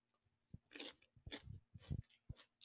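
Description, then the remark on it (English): A person chews kimchi: crunchy chewing, several wet, crisp crunches in an uneven rhythm with soft thuds of the jaw between them, fairly quiet and with no one talking. “So yeah, that was me eating kimchi for the first time.”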